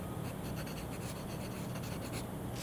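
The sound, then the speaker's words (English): A pen scratches steadily across a paper form as a sergeant writes a preliminary report, a continuous, fairly quiet stream of soft strokes, with no voices present. “slowly pushed out a form and a pen and watched silently as the sergeant prepared a preliminary report.”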